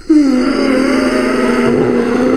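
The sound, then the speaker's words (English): A voice imitates a man's normal heavy breathing with one long, low, droning groan that holds steady and loud for about two seconds, with no other talking. “And people knew he was asleep because his breathing changed. So normally he breathed like this.”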